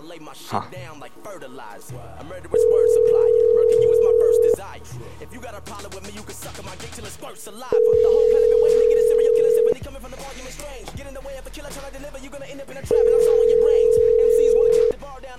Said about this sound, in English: We're listening to the ringing in anticipation. Oh, I can't hear it. I didn't know you can't hear the ringing.